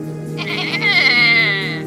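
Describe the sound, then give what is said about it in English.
A single drawn-out goat bleat, loud, with a wavering, nasal tone lasting just over a second over a faint steady background hum, from one of two goats being rounded up. “Come, ye goats! I shall round you, and you will come to me, because I am calling you.”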